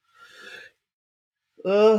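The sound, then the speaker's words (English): A soft, breathy exhale after a sip of a drink, followed by a short pause and then the brief start of a voiced sound. “having a drink, okay?”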